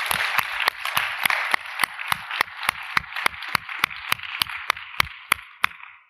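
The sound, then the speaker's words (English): An audience applauds the event organizers: a steady wash of clapping, with sharp, evenly spaced claps from one person cutting through about three times a second before it fades out. “And I think the organizers probably deserve a round of applause for pulling that together.”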